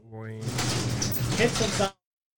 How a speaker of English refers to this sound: Shut the door. And it's going to get loud. That door is loud when it shuts.